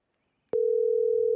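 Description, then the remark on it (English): A steady telephone dial tone, as a call is placed live on air during the show Champs and Chums, starts abruptly after a brief silence, holding one clear, unbroken pitch at moderate loudness with a faint low rumble beneath it. “Well, the dial tone is working okay, so that's good.”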